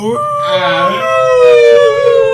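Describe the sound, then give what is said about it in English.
A voice imitates a whale call: one loud, sustained, drawn-out tone that rises slightly, then slowly glides downward, sounding like a long mournful howl. “He splashes up out of the vortex into the water, makes a whale call.”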